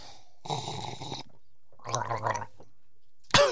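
Someone gargles a mouthful of coffee up close in two bubbly bursts separated by a short pause, followed by a brief sharp noise at the end. No one speaks.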